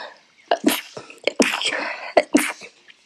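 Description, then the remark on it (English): Someone sneezes, a series of sharp, breathy bursts with quick inhales between them, loud and forceful, with no talking. “I need to sneeze.”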